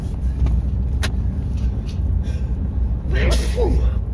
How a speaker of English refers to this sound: I wish I'd quit sneezing. All this smoke in the air from the fires. Sorry.